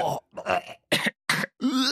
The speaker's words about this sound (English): So I grabbed a bunch of people around the office, and we recorded ourselves gagging in lots of different ways.